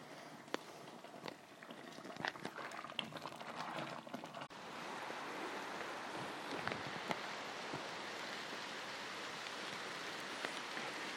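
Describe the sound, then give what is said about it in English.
Rain falls through beech trees, starting as scattered, uneven patters and drips before settling into a dense, steady hiss of rainfall on leaves, continuous with no voices. “It's falling through beech trees.”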